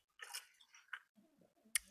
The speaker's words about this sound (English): Yeah, pour one out for a real one, actually. Yeah. I'm going to take to yeah, Jerry. Let me do a little sip.